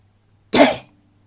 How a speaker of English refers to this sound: Was that a sneeze? No, I think that was a cough.